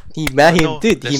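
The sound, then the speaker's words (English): A few sharp, separate hand claps land at a slow, uneven pace, mixed in with a voice that keeps going underneath them. It sounds like brief, scattered applause rather than a full ovation. “There's no applause for that. Please don't applaud.”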